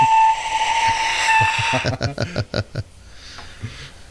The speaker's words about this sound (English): What about the Aztec death whistle? Yes, those we can definitely hear.